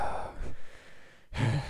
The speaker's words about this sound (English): I keep running out. Sorry if I'm going to start just breathing out into the mic now.